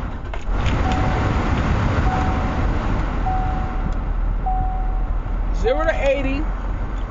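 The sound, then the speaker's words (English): Car air conditioning, just switched on inside a car, blows with a steady, loud whooshing rush, a faint tone recurring at even intervals beneath it, and a brief voice near the end. “I got to put my AC on because this conversation is getting a little warm.”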